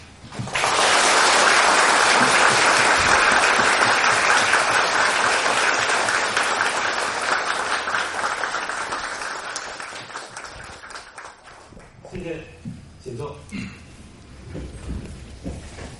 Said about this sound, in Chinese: 首先我提议我们全体起立啊，以热烈的掌声欢迎索达吉堪布来我校讲学